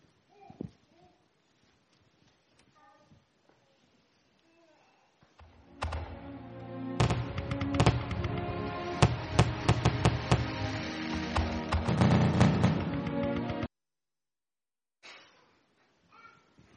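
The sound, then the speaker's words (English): Fireworks, played from a DVD clip, burst in a dense, loud barrage of overlapping bangs and crackles for about eight seconds, with quiet before and after. “And the first one is a DVD clip of some fireworks as an example of letting light shine.”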